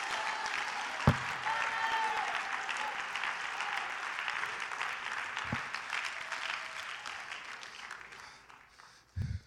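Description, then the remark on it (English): A church crowd at GBFPC claps steadily with scattered cheers and voices mixed in, thanking God in a faith moment, a dense, sustained wash of applause that slowly tapers off toward the end, punctuated by a few sharp thumps. “If you know that God can do it, and if you believe God will do it, let your faith go. Clap your hands, lift your voice, and thank him for what he's about to do in this house.”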